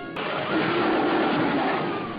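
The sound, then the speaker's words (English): King Kong's roar from the old American film King Kong: one loud, sustained, rasping bellow that holds steady for about two seconds, with a muffled, vintage tone. “King Kong's roar,”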